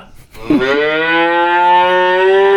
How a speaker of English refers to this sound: Wow. Was that a cow sound? I don't know where.